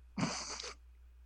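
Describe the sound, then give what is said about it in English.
A single short, breathy cat vocalization lasting about half a second, harsh and hissy rather than tonal, with no talking and a faint low hum underneath. “Cats agree.”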